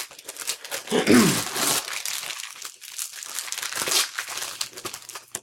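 Crinkling and tearing of thin wrapping paper as a present is unwrapped, a dense rustle that swells near the start, then continues in lighter, uneven crackles and rips.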